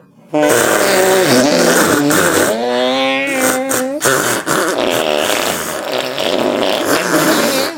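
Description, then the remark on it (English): Loud, buzzy fart noises run continuously for several seconds, their pitch sliding up and down as they play a tune, with no talking. “There's a million ways to fart, no way is a wrong way.”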